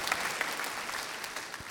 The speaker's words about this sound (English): So if you don't have friends like that, yeah, we can clap for that part. That's good.